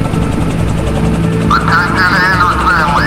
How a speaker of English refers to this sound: Hate to break this up, but that helicopter is landing right in front of us.